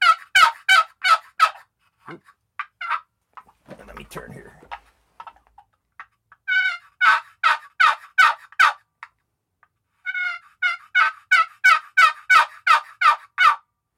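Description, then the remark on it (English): Loud, evenly spaced turkey yelps from a game call come in several quick runs, with a few sharp isolated clucks in between and a brief spoken remark during a pause. “I guess that's not so quiet, but so you get some decent yelps out of it. Get some decent clucks out of it, and the other side sounds just as good.”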